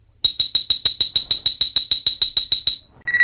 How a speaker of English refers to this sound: You will know it is time to turn the page when you hear the communicator beep like this.